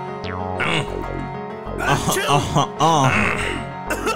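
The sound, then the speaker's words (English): Rough coughing and throat clearing in several raspy bursts, mixed with strained, groaning vocal sounds and a brief pause between fits. “Cough, cough.”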